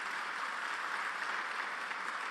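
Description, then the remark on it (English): A crowd applauds the Milwaukee police band steadily, a dense wash of many hands clapping at once with no pauses, moderately loud and sustained from start to finish. “Let's give them a round of applause as well.”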